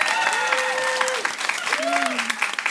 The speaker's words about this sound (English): We're going to do an applause-o-meter. If you think it should make it in, applause.